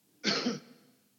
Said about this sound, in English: Well, it's like excuse the cough.